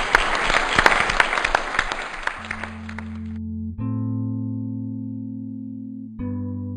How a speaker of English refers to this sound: Great. Thank you. I'm going to give you all like a round of applause in a minute.